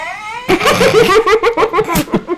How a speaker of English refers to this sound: Fake audience, give it up.